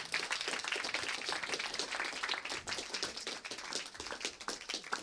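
A crowd applauds the event's organizer, called up onto the stage, steadily for several seconds, a dense wash of many hands clapping at once with individual sharp claps popping out, sustained at an even, fairly loud level throughout.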